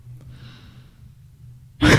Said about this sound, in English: I just coughed and it made me really self-conscious. Sorry.